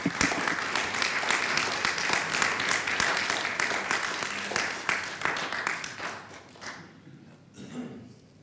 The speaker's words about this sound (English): why don't we just give ourselves a massive clap for what God has done to us.